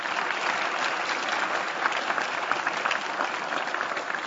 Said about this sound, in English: So I want to give a very generous thank you to McCarthy Tétrault and our VIP sponsor today, the Carpenters Union. So let's give them a round of applause, please.